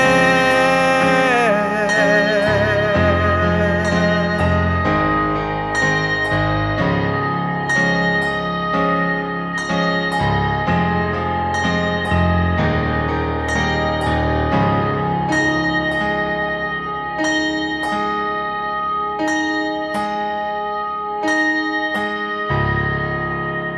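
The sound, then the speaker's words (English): A soul R&B pop song plays at full, steady volume, with a dense layered arrangement and regular percussive hits keeping an even beat throughout. “He's a talented soul, R&B, pop singer-songwriter whose sound is fresh, pure and honest. And that track sounding absolutely fantastic.”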